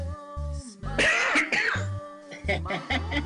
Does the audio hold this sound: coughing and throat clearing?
yes